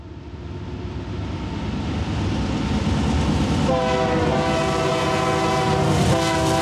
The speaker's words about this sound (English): Just arrived in Laramie. I'm on the footbridge over the Union Pacific Railroad tracks. There's a train going underneath me right now.